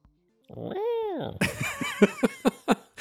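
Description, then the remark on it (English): A person imitates a cat with one drawn-out, rising-and-falling meow, followed by a burst of quick, choppy vocal sounds, fairly loud. “And you're a kitty cat.”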